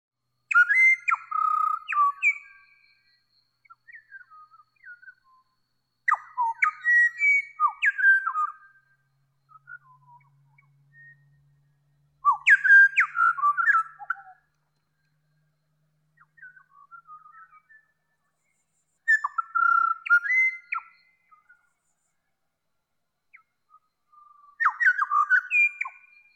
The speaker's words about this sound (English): That was a recording made by Hollis Taylor of the incredible Pied Butcherbird, a black and white songbird native to Australia.